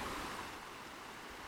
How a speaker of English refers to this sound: So right now, like, there's snow everywhere. But as you can hear, there's the water. Like, the water has broken through. Anywhere that there's a stream or a brook, that's thawed out.